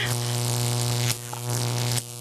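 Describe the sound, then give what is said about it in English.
A loud, sustained electric buzz crackles as a cat gives a static electricity shock, humming steadily with sharp sizzling breaks around the middle and near the end, and no one speaking. “Dear God, the cat, the static electricity, he's”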